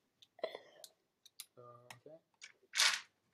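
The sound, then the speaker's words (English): Dice clack and click as they are scooped up off the floor, a scatter of small taps, with a short murmured voice midway and a breathy rustle near the end. “I picked all my dice up off the floor.”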